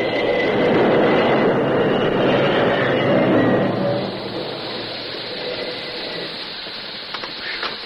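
A train brakes to a stop a few yards from the gap where a river bridge used to be: a loud, steady rumble and hiss with a thin squealing tone, dropping abruptly midway to a quieter drone, with a few faint clanks near the end.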